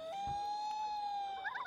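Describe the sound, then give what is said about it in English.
A person whistles one long, steady, fairly high note, holding it evenly for over a second before it breaks into a brief wavering flutter at the end. No one speaks. “That's …. She's whistling.”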